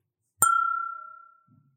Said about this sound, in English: you may have to flick the glass for the ting.